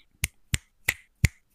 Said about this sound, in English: See, that's it just sounds the same. It just sounds like a continuous snap.